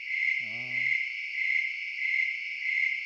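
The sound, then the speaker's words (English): A dense, steady chorus of crickets chirps throughout in a continuous high-pitched trill, with a single low owl-like hoot near the start, a calm nighttime outdoor scene. “And so you've got crickets, right?”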